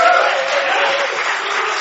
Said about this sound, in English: Why don't we give him a little round of applause? Say thank you to him.